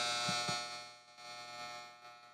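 A dishwasher runs with a steady, droning electrical hum and a hiss of water, plus a couple of soft low thumps early on. Fairly quiet and continuous, with no voices.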